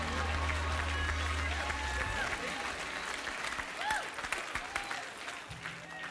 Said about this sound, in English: If you receive that, give the Lord a clap offering.